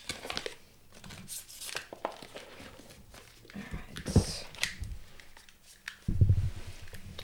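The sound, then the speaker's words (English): A deck of angel oracle cards being shuffled, with papery flicks and rustling in irregular bursts, ending in a few louder taps as the cards are squared. “Do you want to shuffle? Yeah, why not?”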